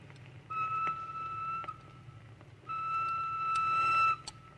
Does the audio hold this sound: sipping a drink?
no